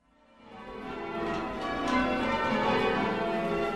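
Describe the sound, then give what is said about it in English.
Church bells ring out together in a rich, overlapping peal that swells in from quiet and holds at a steady, resonant level, with no voices. The bells ring from St. Michael church in the center of Chagford, a town in Devon in the rolling hills of southwest England. “Now, here's one English tradition that hasn't changed all that much, the ringing of church bells in the rolling hills of southwest England.”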